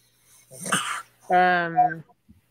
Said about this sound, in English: was that the dog just now? Yeah, he's going, having a fit trying to get more of them salmon niblets. So he's pretty confident that I've got them hidden somewhere. So he's like sniffing and spazzing and trying to look underneath the table.